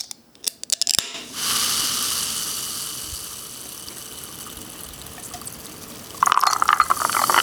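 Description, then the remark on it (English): A few sharp metallic clicks as a can of gin and tonic is cracked open for an evening drink, then a long steady fizzing hiss, followed by the bright splashing gurgle of the drink being poured into a glass. “This is us, sitting down for our evening drink, except as you'll hear with the opening of the can, I have a gin and tonic, as straight scotch is way out of my league.”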